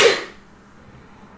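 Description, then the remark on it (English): A single sharp sneeze bursts out loudly at the start, then fades quickly into quiet background tone. “Bless you. Thank you.”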